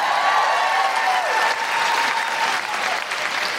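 Steady audience applause, a dense wash of many hands clapping at an even, loud level throughout, with a faint whistle-like tone running through it.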